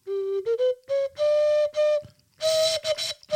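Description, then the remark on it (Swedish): A clay ocarina plays a short, simple melody of sustained, breathy-pure notes, using only a few pitches that step gently upward, with brief gaps between phrases and no talking. “Jag håller på att spela på mikrofonen.”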